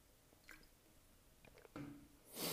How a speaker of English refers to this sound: Excuse me, I need to drink some water. So you're gonna have me like an ASMR drinking water.